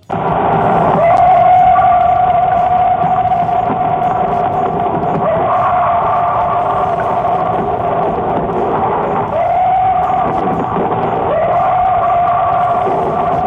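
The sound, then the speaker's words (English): Coyotes howl in a loud, continuous chorus of long, wavering high-pitched tones that rise and dip, with no pauses and a slightly muffled, lo-fi quality throughout. “Now, before I play those sounds, a lot of times it's mistaken that a call of Bigfoot is actually a coyote. Here is a coyote.”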